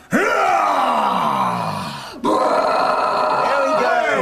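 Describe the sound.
A voice imitates a roar in two long, growling bursts, the first sliding down in pitch and fading before a sharp cutoff, then a second loud, rough roar right after.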